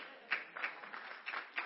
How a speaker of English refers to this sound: That's an interesting time to clap, but anyway.